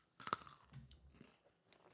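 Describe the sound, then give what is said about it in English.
Crunchy chewing of peppermint bark and homemade peppermint ice cream: a sharp, loud bite and crunch at first, followed by softer, wet mastication sounds continuing steadily, with no talking. “I am eating right now.”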